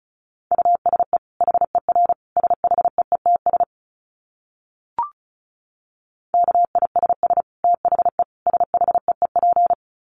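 Rapid Morse code tones at 35 words per minute: a single steady beep keyed on and off in quick dots and dashes, two bursts separated by a short pause with a faint click between them, clear and alone.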